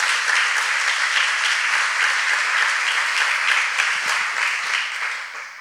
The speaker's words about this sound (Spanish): Dar un aplauso a Jesús.